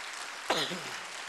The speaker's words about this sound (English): If you believe that, someone clap your hands and just say amen to that.